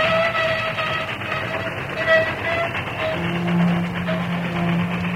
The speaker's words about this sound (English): The train slowed, but its momentum forced it on.